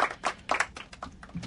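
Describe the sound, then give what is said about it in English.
A short burst of hand-clap applause: a handful of sharp, uneven claps in quick succession, fairly soft overall, with no voices over them. “Hand clap of applause will be great, but we'll just take her getting on the air.”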